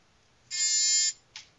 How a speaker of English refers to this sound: Was that loud enough, the buzzer? Yes.